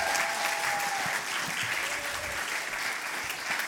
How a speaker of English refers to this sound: So can we give Miss a big round of applause here at the front as well?